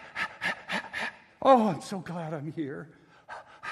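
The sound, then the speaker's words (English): A person imitates a dog panting with four quick, breathy huffs in a steady rhythm, then switches straight into speaking as the dog's thoughts in an eager, excited voice. “Here's a dog. Here's what he's thinking.”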